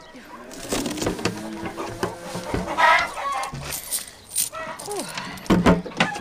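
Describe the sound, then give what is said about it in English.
A chicken clucks in short, uneven bursts, its squawky calls mixed with clattering and rustling noises throughout, rising into a few sharper cries near the end. “Clean off the chicken”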